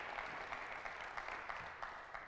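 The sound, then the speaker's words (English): A church audience claps together in praise to Jesus during a sermon, a dense, steady wash of many hands with scattered sharper claps standing out, holding at an even loudness throughout with no one talking. “Can somebody put your hands together today and give Jesus a hand clap of praise?”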